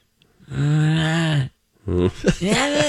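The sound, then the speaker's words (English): A person imitates the drawn-out whining groan their own dog makes while they are sleeping, a sustained low-pitched tone lasting about a second, then breaks into a couple of shorter, rising yelping sounds. “Like, I'll be sound asleep and I could hear my dog going.”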